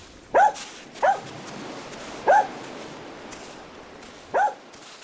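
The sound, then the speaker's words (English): A dog lets out four short, high whimpering yelps at irregular intervals, moderately loud, with quiet background between them and no talking. “Come on, stupid dog. Your bath awaits.”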